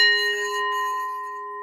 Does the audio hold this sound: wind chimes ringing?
yes